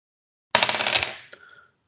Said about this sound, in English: I love the way that we can hear the dice being rolled as well. It's a little bit extra for people at home. The ASMR thing, does that count?